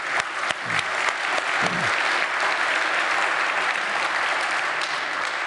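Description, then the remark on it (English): A church audience claps steadily for several seconds, a dense, sustained wash of applause with a few brief voices rising early on. “And we need to give him a round of applause for all of that.”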